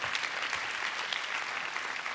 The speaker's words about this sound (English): Anyone, come on, if we're going to clap, let's clap here today.